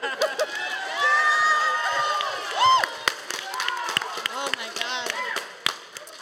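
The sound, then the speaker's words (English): Audience applause for a comic: scattered, uneven clapping mixed with crowd cheering and high, rising whoops and shouts, holding fairly steady before thinning into sparser claps toward the end. “I noticed the applause for this is going down by each person, but I'm also from Portland.”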